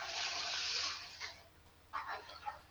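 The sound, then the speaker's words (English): A toilet flushes with a loud rush of water that lasts over a second and then fades, followed by a short gurgling surge near the end. “Hey, that was cool, a toilet flushing effect.”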